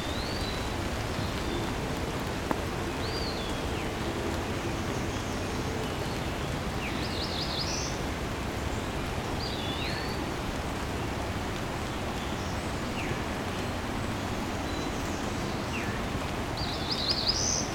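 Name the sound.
cerulean warbler buzzy song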